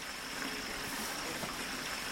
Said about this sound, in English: points to a ditch containing a small trickle of water.